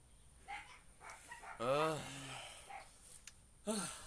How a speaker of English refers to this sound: I may or may not have flipped off your dogs for barking at me.